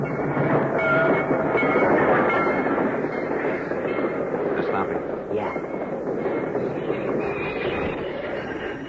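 A heavy freight train, stopped by a flare lit on the tracks in a cut, grinds along, its dense rumble and metallic clatter filling the whole stretch as it slows, with faint wheel squeal mixed into the steady roar.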